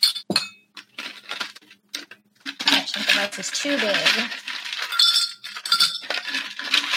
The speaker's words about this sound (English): So I'm going to put more ice in my cup.